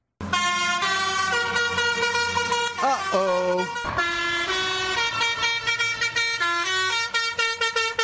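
Loud musical vehicle horns on the roadways blare a bouncy, repetitive melody of the baby shark theme song, sustained brassy tones stepping between notes with a brief pause partway through, continuous.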